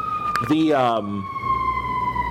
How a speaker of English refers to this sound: We'll let the ambulance go by. That's fine.